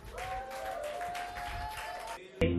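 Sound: audience clapping applause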